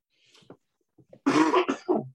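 A few faint throat noises, then a sudden close, loud burst of harsh coughing, three rough hacks in quick succession with no talking.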